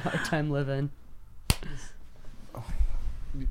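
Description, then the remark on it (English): A single sharp hand clap, made to put a spike in the audio for syncing, cracks out midway, short, surrounded by people talking before and after it. “I was like, was that a clap?”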